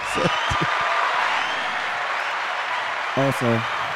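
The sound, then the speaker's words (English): Steady applause fills the whole stretch as a dense, even wash of clapping at moderate loudness. A few short voiced bursts rise over it near the start and again near the end. “First and foremost, let's give a round of applause to the foodie.”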